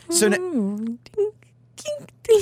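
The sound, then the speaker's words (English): A voice imitates busy restaurant ambience with people talking in the distance: a falling, murmuring vocal tone, then scattered short clicky bursts like clinking silverware and glasses, over a faint steady low hum. “I was trying to make the sounds of people talking in the distance with sounds of clinking silverware and glasses.”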